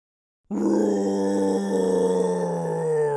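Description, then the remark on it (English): After a brief silence, a human voice lets out one long, loud, sustained roar imitating a lion, a deep rumbling tone held steady for nearly three seconds. “But can you roar like a lion?”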